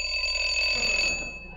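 A doorbell at the door of a hideout rings with a steady, high, metallic electric ring for about a second before cutting off and leaving a faint rattling tail. No one speaks.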